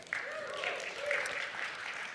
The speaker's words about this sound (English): I know. We just made you clap at money.